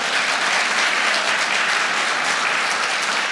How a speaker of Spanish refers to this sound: Si lo crees, dale un aplauso fuerte al Señor.